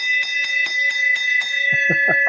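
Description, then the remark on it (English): A bell is struck rapidly and repeatedly, about four times a second, its bright metallic ring sustaining steadily underneath. Near the end, lower thumping knocks join the quick strikes. “ring that bell.”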